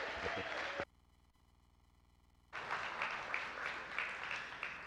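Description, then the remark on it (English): Church audience applause welcoming the founding pastor, a broad dense wash of many hands clapping, breaks off abruptly into near silence for about two seconds, then resumes just as loud and steady. “I think that deserves a big round of applause.”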